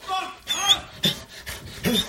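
A dog gives three sharp barks, spaced unevenly, with whiny, breathy panting sounds filling the gaps between them.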